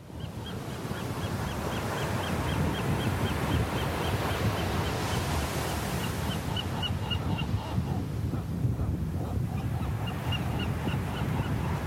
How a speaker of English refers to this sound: complete with the call of a western gull as the waves of the Pacific wash back and forth over the sand